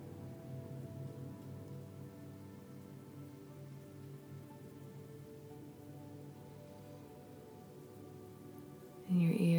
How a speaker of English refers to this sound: I want you to listen for the sounds of water. Follow the path until you find it. This water might be the big ocean, might be a lake, might be a pond, could be a stream or river, a small babbling brook.